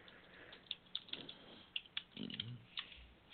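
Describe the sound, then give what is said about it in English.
Rapid, irregular key clicks from a computer keyboard being typed on, fairly quiet, with a few brief pauses between bursts of keystrokes and no voices. “And of course, it looks like you've typing that in there.”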